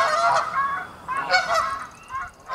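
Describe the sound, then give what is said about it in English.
Loud, harsh goose honks in overlapping bursts, several birds calling at once in an agitated, alarm-like chorus with brief gaps between the volleys: the start of a 10-hour recording of geese danger calls, played very loudly. “listen to the start of a 10-hour recording of geese danger calls, something seems off.”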